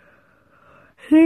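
A drawn-out yawn: a quiet, breathy stretch that swells near the end into a short, loud, voiced groan.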